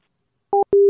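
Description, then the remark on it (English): A telephone busy signal after a hang-up: after a moment of silence, a short steady electronic tone sounds, pauses briefly, then a second tone starts and runs on. No one speaks. “Why'd you hang up on me, asshole?”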